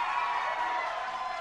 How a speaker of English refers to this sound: We have a bunch of girls. Let's cheer for the girls.